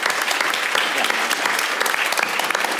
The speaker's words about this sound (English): So before we close, I'd like to thank our co-presenter tonight, the Daniel K. Inouye Institute. So a big round of applause for them, please.